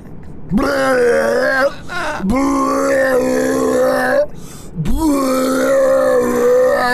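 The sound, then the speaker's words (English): Three long, loud, buzzy fart blasts from a man aboard a plane, each starting with a quick upward pitch slide and then holding a steady low drone for a second or two, with short gaps between and no talking. “Sir, was that your butt? I believe that was out of your butt, sir.”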